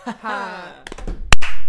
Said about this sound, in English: That clap was loud.